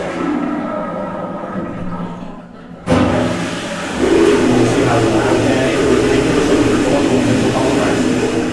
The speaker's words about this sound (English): That's a toilet flushing. The concrete walls bounced around the sound, creating a wave of noise.